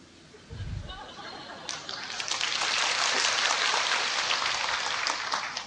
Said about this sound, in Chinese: 还没有讲已经拍手了